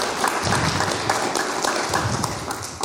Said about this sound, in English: And y'all give the Lord a hand clap